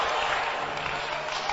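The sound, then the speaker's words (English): A group of sisters claps for the brothers during hymn singing, a steady, dense burst of applause, loud, filling the whole moment without any voices standing out. “Sisters, clap for the brothers.”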